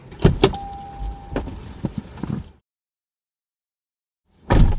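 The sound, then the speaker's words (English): A Supersonic Red Toyota Prius Prime plug-in hybrid car hums at idle, a thin electric whine among clicks and clunks, then goes quiet for a couple of seconds before a sudden louder burst of noise. “That hum is a little bit different when it's got this much power.”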